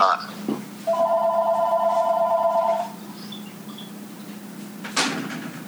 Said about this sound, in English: You can see how professional I am. I'm recording at my father's kitchen, and the phone won't stop fucking ringing.